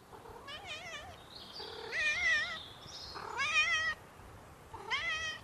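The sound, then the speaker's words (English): Several loud cat meows follow one another over about five seconds, some drawn out and wavering like insistent calls, with short pauses between them and no one talking. “This is for the cats to sleep. They have their own room.”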